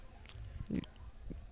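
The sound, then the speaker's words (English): Someone chews Italian bread with butter right on the microphone at 10:30 at night, with soft wet crunches and squishy mouth sounds in a quick irregular rhythm, one louder bite near the middle. “I was just going to say, you're chewing right on the microphone.”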